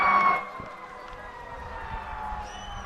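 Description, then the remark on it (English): Fire engine sirens wail as the engines go by a ballpark during a baseball game, a sustained tonal wail loudest at the start and then fading as the vehicles move past, with low traffic rumble underneath. “As we've got some fire engines going by the ballpark, you can hear.”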